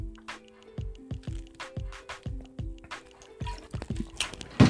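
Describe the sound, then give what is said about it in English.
During a water break, someone gulps down a pre-workout drink in quick, steady swallows, about ten wet glugs in a row, with no talking. “Still guzzling that pre-workout.”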